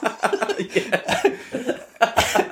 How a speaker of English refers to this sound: Why are you coughing all the time? It's like a coughing amnesty.